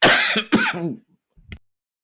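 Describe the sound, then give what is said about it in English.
A loud throat clearing, then a harsh cough burst, followed by a brief quiet pause and a small final clear of the throat, heard alone against the microphone, caught because the speaker hit the volume knob instead of the cough button. “I hit the volume knob when I was going for the cough button, so I missed it for the first time.”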